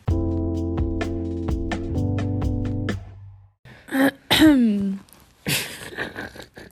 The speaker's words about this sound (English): You're going to have to cut out coughing and our... clearing of the throat out of that. It's fine. I have asthma.